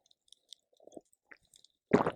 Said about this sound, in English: As I sip my golden tea, my golden milk.